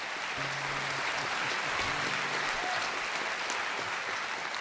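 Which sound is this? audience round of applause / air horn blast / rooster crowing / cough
audience round of applause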